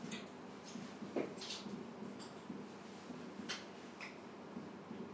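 A few quiet, sharp metallic clicks and a scrape as a room door is locked after someone opened it, spaced irregularly against a faint background hush with no talking.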